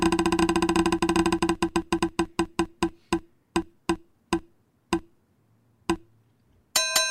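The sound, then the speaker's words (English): A spinning prize wheel clatters with rapid ticks that gradually slow and spread apart until it stops, followed by a bright ringing chime. “Let's spin it again.”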